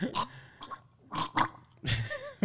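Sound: sipping a drink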